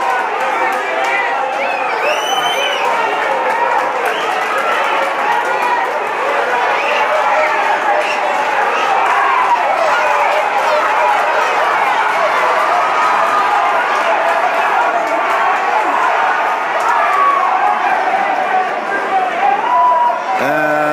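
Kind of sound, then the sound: crowd, crowd cheering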